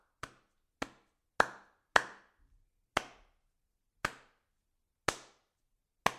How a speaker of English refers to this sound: You've been working very hard with editing, and I think you deserve a round of applause, so... I'll edit a round of applause in. Pop one in there if you want to.